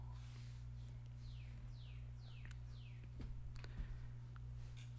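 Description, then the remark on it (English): A bird sings a series of four or five descending whistled notes at a steady pace, fairly faint, over a constant low electrical hum with no one speaking. “You hear that bird? That's a nice bird. Yeah, I can hear it in the mic.”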